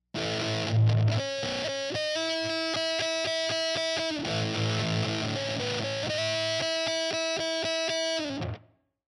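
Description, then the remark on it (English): Electric guitar played through a Big Muff fuzz pedal and reverb plays a sustained, saturated riff with repeated rhythmic chugs and held notes, washed in reverb, loud with no voices. “Go ahead and pick one up, and let's give a listen to that in addition to our reverb and our Big Muff.”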